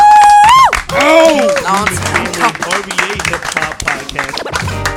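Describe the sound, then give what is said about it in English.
Loud, steady clapping from a few people at Overcoast Studios, mixed with whooping and shouting voices after a brief high whistle-like tone at the start. “Clap it up.”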